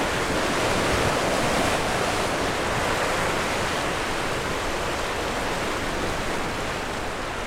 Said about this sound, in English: It was a fierce wave, big brown, and the aftermath is just swirling around. The river has just risen. I think it's risen a metre, do you think? Yeah, a metre, 2 metres. It's incredible, isn't it?